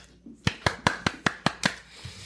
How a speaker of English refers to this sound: That's me clapping, not anybody fapping, for those who aren't paying for the beautiful visual that is me.